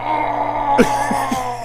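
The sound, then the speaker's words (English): A voice imitates the distorted screaming dubbed over a dying ant on the show Monster Bug Wars, a rough, strained burst of vocal noise, then a couple of shorter gravelly cries, over a steady humming background. “I think my favorite is Monster Bug Wars, not because it's inaccurate or anything, but because they put, like, distorted screaming over the insects.”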